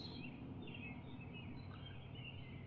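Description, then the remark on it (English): Birds chirp outdoors in the morning in Elkins, West Virginia, a small town in a valley of the Allegheny Mountains, a string of light calls repeating over a steady low background rumble of light traffic. No one speaks. “I can hear the birds a lot better, and I'm sure the wildlife probably enjoys that.”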